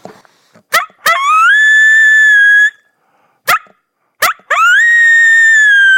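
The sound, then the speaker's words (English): A voice imitates a wolf's greeting howl in a shortened form: twice, a sharp yip-like onset leads into a rising, then steady, mid-pitched howl lasting about a second, with brief clipped bursts between. “It's just a greeting howl. And it's the exact same howl, just cut in half.”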